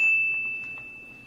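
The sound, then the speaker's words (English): A single bright bell ding rings out clearly and sustains as a steady, high, pure tone, slowly fading over about a second with no voices. “Well, get your bell ready because they are favored by 3.5.”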